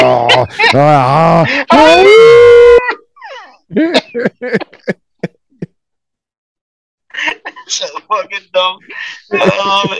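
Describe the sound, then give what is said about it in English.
A man's voice mimics a werewolf, growling and then letting out a loud, wavering howl, followed by a few sharp clicks, a pause, and brief speech. “You're growling and howling in the fucking thing.”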